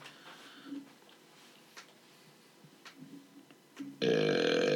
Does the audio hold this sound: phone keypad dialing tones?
no